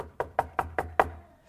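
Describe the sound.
Five quick, evenly spaced knocks on a hard surface imitating a knock on a door, moderately quiet, each a sharp rap with a short resonant tail, followed by brief silence.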